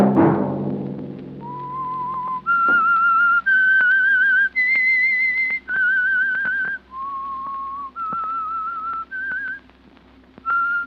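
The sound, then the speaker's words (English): The theme melody of the radio program The Whistler: about ten long, clear notes that step up and down in pitch, slow and steady, whistled alone over a faint low hum after a brief opening thump. “In a year filled with sadness, exuberance, and love, a macabre program like The Whistler took time to remind its audience that it almost always gets the New Year's it deserves.”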